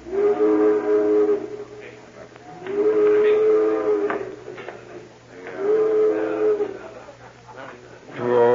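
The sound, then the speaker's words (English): A boat's steam whistle sounds three long, low, reedy blasts at even intervals, each about a second long, with softer clattering noises in the gaps between them. “I'm sure glad to see that boat.”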